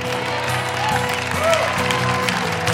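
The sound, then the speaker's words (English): A crowd claps steadily in a dense, continuous wash of hand claps, with sustained musical tones and a faint murmur of voices running underneath, holding a fairly even loudness throughout. “This is something you have to not just clap to, but believe in the depths of your being.”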